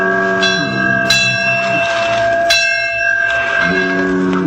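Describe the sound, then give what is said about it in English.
A life buoy bell rings out at night on the ocean, two sharp clanging strikes that leave long, shimmering metallic tones hanging over a steady low hum, with no voices. “Out there in the ocean, beyond the sight of land, Little Toot spent a frightful night, tossed about by the big waves, while the life buoys and sounds in the night made eerie noises.”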